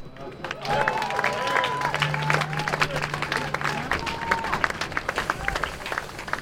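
A crowd bursts into sustained applause as a speaker is introduced, a dense wash of many hands clapping at steady loudness, with scattered cheers and crowd murmur mixed in.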